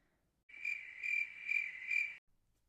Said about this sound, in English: Crickets!